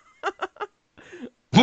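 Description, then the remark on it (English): Three quick coughs in a rapid burst, then a raspy, breathy rasp and the start of a voice at the very end. “I should have muted my mic when I coughed.”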